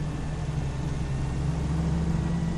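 inside a moving car

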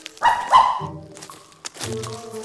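puppy barking

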